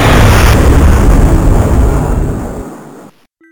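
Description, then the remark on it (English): A loud blast of sci-fi laser fire, as several Santas simultaneously fire lasers at a machine, and the machine's explosion erupt at once, a dense roaring rumble that fades out over a few seconds. No voices are heard. “the Santas simultaneously fired their lasers at the machine!”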